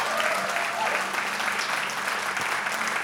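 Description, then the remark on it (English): The Mission Church audience claps loudly and steadily, a dense wash of many hands with a few cheers and shouts mixed in, sustained without pause throughout. “And everybody said, come on, Mission Church, clap real loud if you're excited about the future.”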